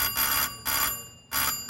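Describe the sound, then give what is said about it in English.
A door buzzer sounds in three short, harsh bursts with brief gaps between them, a steady bright electric drone that is fairly loud, with no voices. “What's that? The door buzzer.”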